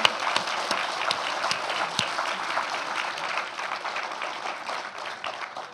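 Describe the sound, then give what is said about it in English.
A crowd applauds in a dense, steady wash of many overlapping claps, loud and sustained throughout, easing slightly toward the end with no voices over it. “I think a round of applause, absolutely.”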